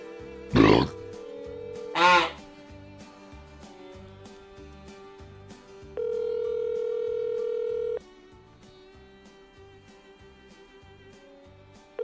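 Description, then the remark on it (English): A phone call that goes unanswered: two short dialing bursts, then a steady line tone with one long louder ringback tone that stops, leaving the line humming with no pickup. “No one ever picks up when you call them on a podcast.”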